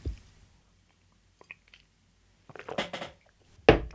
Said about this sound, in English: And creaky. Well, not me, the chair. I tell you, this IKEA chair, it's not too bad for comfort, but it is absolutely pants for not making noises. It's not exactly a great studio chair.